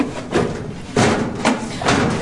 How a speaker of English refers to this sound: Quickly, that's the hangar door.